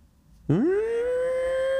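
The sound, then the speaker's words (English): An air raid siren kicks in suddenly, its pitch sweeping upward in a rising wail before settling into a loud, steady, sustained tone, with no voices present. “You know, sometimes like a volunteer fire department will have one, or like a tornado siren, and or in a hockey stadium when they score a goal.”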